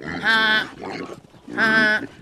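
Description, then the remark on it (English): Two loud, drawn-out pig squeals, each about half a second long, separated by a brief pause with a softer grunting sound in between, as pigs are herded into a room for the night; no one talking. “please herd the pigs and geese into Cliff and Kittle's room for the night”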